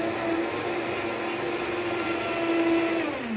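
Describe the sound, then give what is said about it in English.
A blender whips a creamy, thick smoothie with a hemp cream base, running at a steady, loud whir with a constant motor hum, its pitch sliding down briefly near the end as it winds down. No one speaks. “So let's whip that up.”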